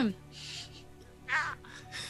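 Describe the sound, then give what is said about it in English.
A person imitates a low, annoyed crow caw with a few harsh, raspy vocal bursts, separated by short pauses. “Just a low, annoyed caw.”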